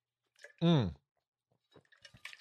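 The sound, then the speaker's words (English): A thermos cup clicks open and someone drinks coffee: a brief, loud, tonal gulp-like burst, then scattered small wet clicks and sipping sounds. “here, I'm raising my thermos cup here. This is the, there you go. Clicking it open. Drinking.”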